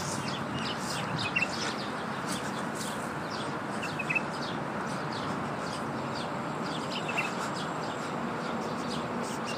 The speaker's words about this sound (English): I don't know how much of the birds and everything you can actually hear, but it's rather nice amongst all this concrete.